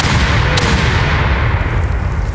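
A loud, booming cannon blast with a heavy, rumbling roar that fills the whole moment and rolls on without fading, deep and close, with no voices over it.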